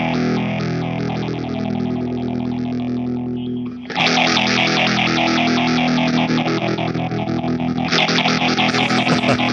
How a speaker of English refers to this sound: Trem with square wave. It's very nice. I like it.